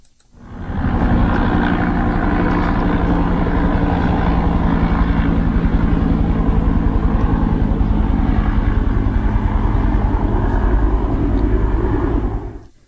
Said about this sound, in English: Here we go. We're going to start out with there's a helicopter going overhead.